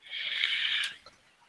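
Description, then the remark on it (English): A single raspy, snoring breath, a hissy snort-like inhale lasting about a second before trailing off into quiet. No one speaks. “Who was snoring?”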